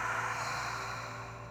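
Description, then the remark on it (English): A person doing a breathing exercise draws a steady, airy breath into the chest through the mouth and pushes it out through the mouth, fairly loud, fading slightly toward the end over a faint low hum. “Breathing into our chest through our mouth. Out your mouth.”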